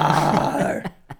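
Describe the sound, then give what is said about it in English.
A person imitates the roar of a bear-like monster in a forest with a sustained, gravelly, low growl for under a second, then breaks off into two short breathy bursts. “they kept seeing beasts and bear-like monsters they described moving through the forest and roaring at them.”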